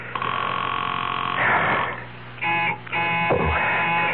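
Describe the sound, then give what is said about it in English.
A telephone rings on and on without being answered while a caller waits for someone to pick up, a loud, buzzy electronic ring broken by short pauses between rings, with no voices. “Come on, come on. Answer the phone.”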